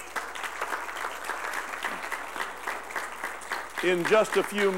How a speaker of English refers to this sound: But round of applause for all the dads today.